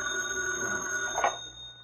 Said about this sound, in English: Britt Reed and Cato were at their apartment when the phone rang.